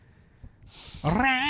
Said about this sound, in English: It sounds like a drowning cat.